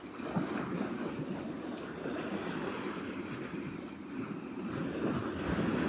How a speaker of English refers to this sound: Just feel the waves washing over, cleansing us. Feel the waves renewing us with every breath.